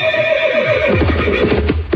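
A loud horse whinny rings out alone, starting high and sustained, then breaking into a rapid, shaky descending neigh over about two seconds.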